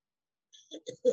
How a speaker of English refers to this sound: But you're coughing. Yeah, this is like coughing.